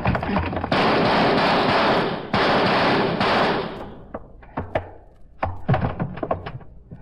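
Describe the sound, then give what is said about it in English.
A long, loud burst of rapid gunfire roars for several seconds as a lock is shot out, then scattered single shots and heavy thuds crack out as a door is forced open. No one speaks. “I'll shoot the lock, and then we go in. All right, hit the door.”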